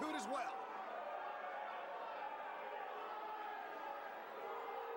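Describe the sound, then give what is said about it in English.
A large wrestling-show crowd boos wrestler Chad Austin as he comes out, in a steady, dense roar of many voices that holds for about five seconds, with a short warbling whistle at the very start. “The crowd's booing.”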